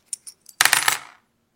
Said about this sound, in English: Like every major decision in my mom's life, she consulted an ancient Chinese oracle called the I Ching. This begins by tossing brass coins 6 times.